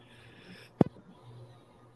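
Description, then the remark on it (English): A single abrupt sneeze bursts out, loud and sharp with a quick trailing puff, then fades into a low, steady background hum with no talking. “Bless you.”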